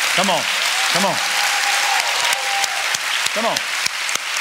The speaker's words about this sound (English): I wish we could just clap our hands for him and give him an ovation.